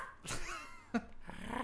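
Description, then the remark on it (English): Someone imitates a small Pomeranian-like dog's bark with a couple of sharp, high-pitched yaps, unaccompanied by speech, with a brief trailing vocal whine. “I guess you could say it's really Pomeranian-ish.”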